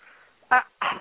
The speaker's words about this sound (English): I hear your dogs are going crazy back there. Yeah, as usual. I got them yeah. to be quiet most of the show, and it's not even the one that usually barks. It's the other one.